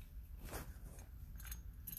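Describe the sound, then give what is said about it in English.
A few short, bright jingles of keys as someone plays with them, coming in brief bursts over a steady low rumble in the background, fairly quiet, with no one speaking. “I am playing with my keys right now.”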